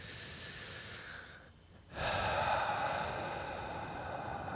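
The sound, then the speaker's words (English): Labored asthmatic breathing: a long, rough breath, a short pause, then a louder strained breath that carries on. Nobody speaks. “So when you guys hear some of this breathing.”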